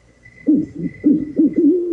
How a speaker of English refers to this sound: Oh, shit, man. We got owls out in this motherfucker, too, man.